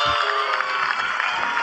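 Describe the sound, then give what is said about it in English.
A crowd at a concert at the Mendocino Auditorium claps steadily, a dense, even wash of many hands at a constant, fairly loud level, with no distinct voices standing out. “Why are people clapping?”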